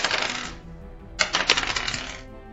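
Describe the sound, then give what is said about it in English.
Percentage dice rattle and clatter across a hard tabletop in two bursts, a quick tumble followed by a longer skittering roll that settles. Fairly loud, with no voices. “Roll me the percentage dice again.”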